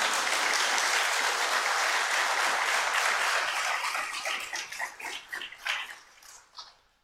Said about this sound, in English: But I am so thankful for the guys that are standing in front of me. Would you give them a round of applause, please?